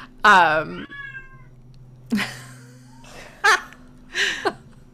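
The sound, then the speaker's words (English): A male pet cat meows several times: a long, wavering cry first, followed by three shorter meows spaced about a second apart, with a low steady hum underneath. “And my cat is making himself known, so we're having an exciting recording day today.”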